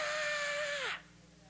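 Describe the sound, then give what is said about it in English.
A woman screams out a window: one loud, sustained high-pitched scream lasting about a second. Its pitch sags at the end before it cuts off into near silence. “Every Monday morning and scream out the window to start her week.”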